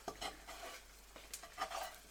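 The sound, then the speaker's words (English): Several rough scraping strokes of a utensil against a pan and plate as cooked brains are pushed off onto a plate with toast, with soft clinks and a faint sizzle between them. No one speaks. “Alright, good scraping noises, here we go.”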